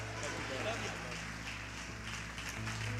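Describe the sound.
An audience claps steadily, a dense, continuous crackle of many hands at an even loudness throughout, with a low droning hum and faint voices mixed underneath.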